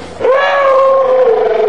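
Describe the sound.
A man's voice imitates a whale call: a single long, loud moaning tone that swoops up, holds steady, and sags slightly at the end, with no other sounds.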